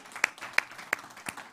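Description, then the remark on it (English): Sparse applause from an audience for over $110,000 given to the All In campaign: about five sharp, evenly spaced claps at a steady rhythm, moderately loud, with no voices over them. “Yeah, I know you guys want to clap again, so we can clap again for that.”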